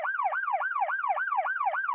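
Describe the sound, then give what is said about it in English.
An emergency vehicle siren wails in a fast, repeating yelp, each rising-and-falling sweep lasting about a quarter second, loud and steady throughout with no voices. “Get those sirens out of there.”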